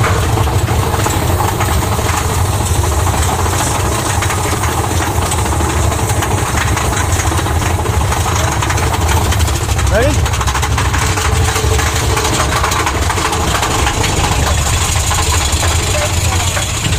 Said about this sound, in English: That's the big train.